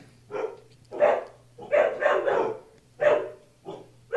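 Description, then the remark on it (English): Several dogs bark at someone at the door of a house after dark, a run of loud barks, some overlapping, with short pauses between bursts and a low steady hum underneath. “What are they barking at?”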